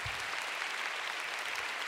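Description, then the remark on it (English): A church audience applauds together to give the Lord a big hand, a dense, steady wash of many hands clapping at once, sustained and fairly loud throughout with no voices standing out. “Come on, give the Lord a big hand.”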